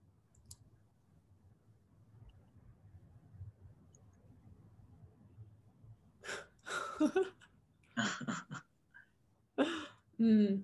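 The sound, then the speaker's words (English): After a quiet stretch with a low background hum, a person yawning during a relaxation exercise for releasing jaw and neck tension, eyes closed and head moving, gives a series of loud, breathy, drawn-out yawns and sighing exhalations, several in close succession. “And so doing this, we're trying as well to get into a natural process of yawning, okay?”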